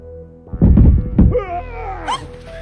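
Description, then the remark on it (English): A man, hurrying so fast down a staircase that he trips, tumbles the rest of the way down: a rapid cluster of heavy, irregular thumps and bumps, then a rising and falling whiny, wailing cry that trails off over a low hum. “trying so fast to get down the stairs that he tripped and fell the rest of the way down”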